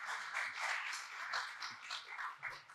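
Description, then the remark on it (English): An audience claps steadily for a few seconds, a dense, crackling patter of many hands at moderate volume with no voices over it. “I'm glad you clapped, you liked my humor, because in many places I go, they say, oh no, sexist and whatever.”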